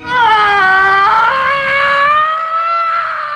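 A man, actor F. Murray Abraham in the film Star Trek Nemesis, lets out one long, loud, sustained scream that rises slightly in pitch and lasts about three seconds, strained, with no talking around it.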